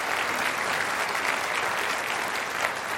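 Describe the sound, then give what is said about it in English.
A crowd gives sustained applause for the team, a dense, even wash of many hands clapping at steady loudness for the full few seconds, with no voices standing out. “Would you give the team a round of applause?”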